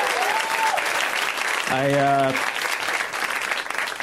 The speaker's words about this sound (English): And my dad's here, actually. Give a round of applause to my dad. Happy Father's Day.